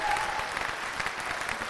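A short burst of applause, steady and dense with many overlapping claps, holding an even level for under two seconds with no talking over it.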